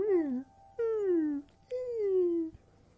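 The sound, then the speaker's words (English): A dog lets out three drawn-out, moaning whines, each sliding downward in pitch, with brief pauses between them and no talking. “I've never known a dog to whine. Ever. He's like, I think he's a cat. He's just moans.”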